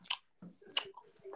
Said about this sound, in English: Just chewing on a bit of lettuce, mate. Jesus. Juicy bit of lettuce.